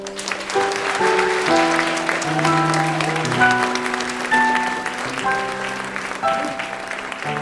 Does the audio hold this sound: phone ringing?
no